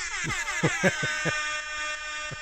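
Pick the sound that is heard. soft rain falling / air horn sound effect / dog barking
air horn sound effect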